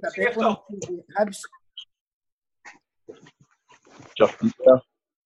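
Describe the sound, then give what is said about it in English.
A dog lets out a cluster of loud, sharp barks, goes quiet for a couple of seconds amid faint background noise, then barks again in a few quick bursts. “Sorry, boys. Fit dog been walking.”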